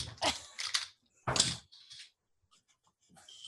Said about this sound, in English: Okay. I'm going to need you to roll me a D100, actually.